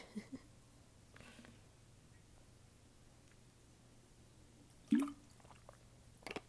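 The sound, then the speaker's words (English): Someone takes a drink of water: faint wet sips and a soft gulp amid otherwise quiet surroundings, followed by a couple of small mouth clicks. “Let me drink some more water.”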